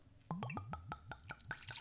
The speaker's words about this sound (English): The last few episodes you've been doing some really healthy pours. That's still a healthy pour, too.